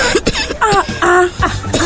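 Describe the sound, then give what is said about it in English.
A loud bout of a customer's repeated coughing, five or so harsh, rasping coughs in quick succession with a throaty, voiced quality and short breaths between them. “But customer, this your cough, eh?”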